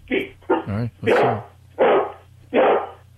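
A dog barks on its owner's command, letting out a run of loud barks and yowling vocal bursts, about six in three seconds, with short gaps between them over a low steady hum.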